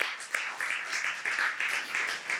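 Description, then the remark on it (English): A church audience applauding together in praise of Jesus at a Christmas morning service, a steady wash of many hands clapping at once with a few sharper claps standing out, moderately loud and continuous, with no talking over it. “So can we give Jesus a mighty hand clap praise this morning?”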